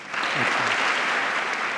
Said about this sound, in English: Yeah, and I mean, this was a remarkable moment because the applause lasted for a very long time and the cameras were just trained on her and she was doing everything in her power to not just completely lose it emotionally.